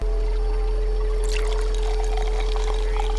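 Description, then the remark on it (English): Pepsi pours into a glass, starting after a second of steady low hum with a bright splashing rush that settles into a continuous fizzing trickle until the end. No one speaks. “He tops off your Pepsi.”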